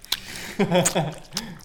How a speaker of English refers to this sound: Oh, yeah. His gums are real hard. Yeah. It is 4 years old. Yeah. It's pretty, it's actively rigid. Yeah, chew right into the mic.